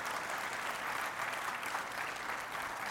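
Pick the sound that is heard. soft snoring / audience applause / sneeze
audience applause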